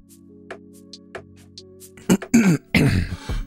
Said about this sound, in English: Let me clear my throat. Let me clear my throat.